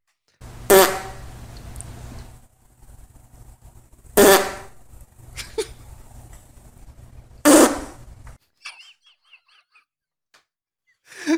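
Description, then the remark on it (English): A dog farting: three loud, raspy bursts spaced several seconds apart over a low background hum, followed by a few faint high chirps. No one speaks. “Dog farts sound like that?”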